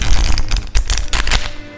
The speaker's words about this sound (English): get that card shuffle, get that nice deck ready.